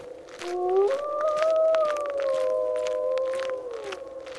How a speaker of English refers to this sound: It's getting dark. And the wind's coming up.